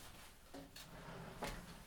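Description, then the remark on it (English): A door swings shut with a soft scrape followed by a couple of short wooden knocks and a firmer thud as it latches. No one speaks. “Oh, will you close that door? Just in case of the humming.”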